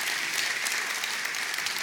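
A crowd applauds steadily, a dense wash of many hands clapping at once with no pauses, moderately loud throughout.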